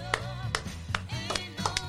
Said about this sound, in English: I like to clap too.